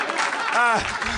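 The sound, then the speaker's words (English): An audience claps in a dense, steady wash of applause that fills the whole moment, with a brief voice rising through the middle of it. “You should applaud.”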